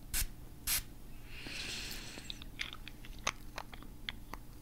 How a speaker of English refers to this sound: also have some Serenity with sage and mint to encourage calm. I'm just going to be spraying that